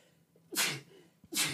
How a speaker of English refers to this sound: Oh, see, I have to sneeze now.